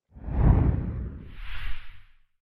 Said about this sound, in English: I'm going to do a little swoosh as we change topics.